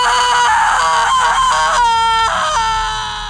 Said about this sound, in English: And I ask, who was murdered here? Right before the screams.